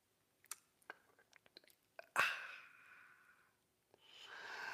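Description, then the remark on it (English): Several small wet clicks and lip sounds, then a loud, airy slurp of someone sipping a drink that trails off into a breathy exhale, with another sip starting at the end. “It's called the simultaneous sip, and it's going to happen right now.”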